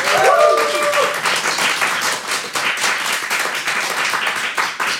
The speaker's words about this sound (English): Can we have a round of applause for Team Jekyll?